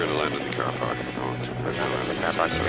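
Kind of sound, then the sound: vehicle, helicopter landing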